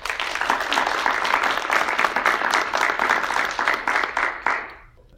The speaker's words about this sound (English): All right, so panelists, thank you so much for joining us today. If we can give them a round of applause.